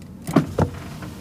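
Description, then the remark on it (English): A car's power window motor whirs briefly as the glass rolls down, a short mechanical hum with a couple of bumps, with no one talking. “And I need to be refreshed with my windows down.”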